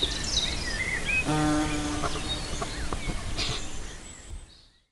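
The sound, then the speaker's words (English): A wasp building its nest buzzes for about a second, a steady droning hum that fades out, while birds chirp and tweet in the outdoor background. “Just to give you an indication of what a wasp sounds like by comparison.”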